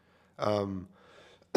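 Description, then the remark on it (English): A single voiced throat-clearing sound into a microphone after choking on something, lasting about half a second, followed by soft breathy noise and an abrupt sharp burst at the very end. No words are spoken. “Sorry for all the coughing into the microphone.”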